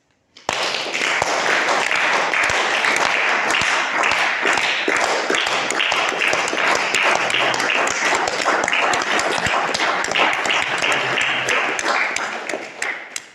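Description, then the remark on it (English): A large crowd in a room claps steadily for about twelve seconds as a group exercise while keeping their attention on their feet, a dense wash of many hands with a loosely shared beat, loud, then it stops abruptly. “And from this place of feeling your feet, we're gonna clap again.”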